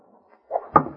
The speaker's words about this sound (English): Look! In that timber there. It's an arrow.